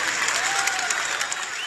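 A steady burst of crowd applause with cheering, dense clapping filling the whole stretch at an even, fairly loud level, with a few faint whoops rising above it.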